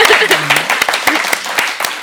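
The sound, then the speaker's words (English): An audience claps to show they want another book, a dense, steady patter of many hands for about two seconds, with a few voices calling out over the applause. “Clap if you want another book.”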